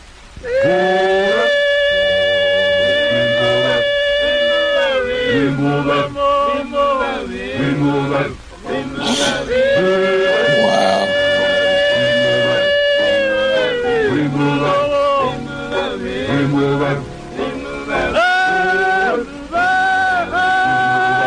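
An old, lo-fi recording of a Zulu song: voices sing in layered harmony with long sustained notes and a rhythmic chant underneath, loud and steady throughout with a dulled, band-limited top end.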